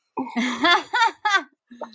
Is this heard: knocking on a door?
no